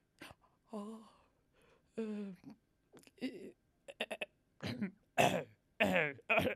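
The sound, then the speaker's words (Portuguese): Throat clearing and voiced hacking sounds, followed by a run of three or four harsh, loud coughs in quick succession, with no other sounds around them. “Tenho tosse.”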